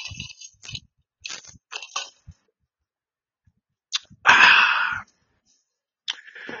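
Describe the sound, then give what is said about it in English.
A few soft, scattered mouth and handling noises, then a loud, airy slurp lasting under a second, like iced coffee being sipped through a straw, followed by a brief quieter sound. “Time to take me a little iced coffee sip.”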